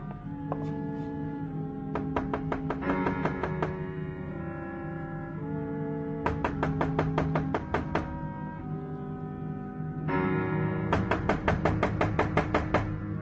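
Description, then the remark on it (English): Footsteps thud up creaky old wooden stairs with a carved banister in three rhythmic runs of quick, hollow knocks, over a steady low droning hum with no talking. “And ascend old stairs, banister carved with old memories, and onto landing, down hallway.”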